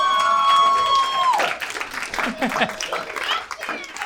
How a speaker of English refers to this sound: Little applause break from one lady, and I'll take it.